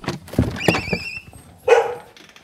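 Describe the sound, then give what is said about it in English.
Thurber, a border collie, barks in his home, an old New Hampshire farmhouse, on a warm late-summer afternoon: a quick series of sharp, high yips and barks with a tonal whine mixed in, followed after a short pause by one louder, harsher bark. “On a warm afternoon in late summer, Thurber, the border collie, welcomes me into his home.”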